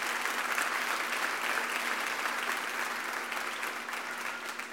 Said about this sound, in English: Y'all give them a big hand clap.